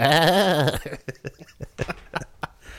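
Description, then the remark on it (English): A person bleats like a sheep in a long wavering, quavering note, then breaks into a string of short, breathy chuckling bursts, fairly loud. “It's always fun to sing like a sheep.”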